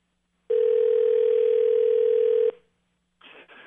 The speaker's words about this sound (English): All right, it's ringing. Hold on.